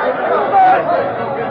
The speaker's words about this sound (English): In town, the sheriff's announcement brought angry comments.